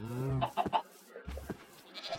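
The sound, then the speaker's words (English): A video-game goat with a single horn bleats in a short, quavering cry, followed by a few brief choppy animal sounds and a second, softer bleat near the end, fairly clear. “Wait, why did this goat spawn with a single horn?”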